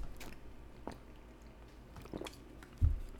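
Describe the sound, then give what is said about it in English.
Wet mouth sounds of someone gulping water from a bottle, a few soft swallows and squishy clicks spaced over a few seconds, ending in a low thump, with no talking. “Just want to, oh yeah, I told myself I would drink all of this water by the end of the podcast, so it looks like we've got a lot left here.”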